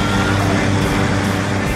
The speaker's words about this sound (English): watch out! There's a truck!